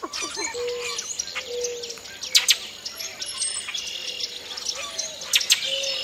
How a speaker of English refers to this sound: Red-winged blackbirds are calling from the thickets around the pool, along with melodious northern cardinals and gravel-voiced boat-tailed grackles.